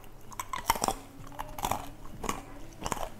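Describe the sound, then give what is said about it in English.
Crisp crunching as roasted macadamia nuts are bitten and chewed, with sharp cracking bursts repeating every half second or so and no talking. “Do you hear how crunchy that is?”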